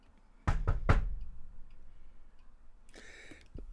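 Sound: knocking on a door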